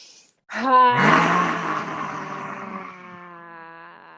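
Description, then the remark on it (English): One loud, forceful lion's breath exhale in a yoga breathing exercise, breathed out of the mouth with the tongue stuck out after inhaling through the nose: a raspy, voiced 'haaa' that bursts out abruptly, then trails off gradually over a few seconds. “The last one, make it a lion's breath. Stick your tongue out, be expressive with it.”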